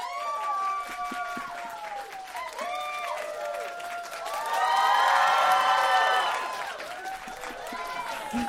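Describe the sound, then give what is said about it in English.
An audience claps to vote for a contestant, while excited cheers and high whoops ring out over the applause, swelling to a louder, denser roar midway before easing back to scattered clapping and shouts. “Clap. We're just gonna go by clapping.”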